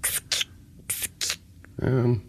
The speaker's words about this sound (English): If that was the noise the scissors made. Hang on. Well, that sounded to me like one of those... Paper The long cutters. Cutter, paper cutter thing.